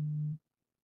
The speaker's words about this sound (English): And I actually got a Twitter notification and I had to check about it because you never know.